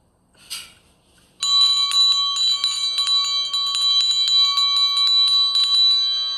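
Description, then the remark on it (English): A doorbell at the front door rings loudly and insistently, a bright metallic bell rattling in rapid repeated strikes that hold for about five seconds after a brief rustle. “Mr. Carson wouldn't like a maid answering the front door.”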